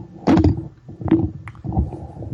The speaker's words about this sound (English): Sorry, just knocking over my microphone.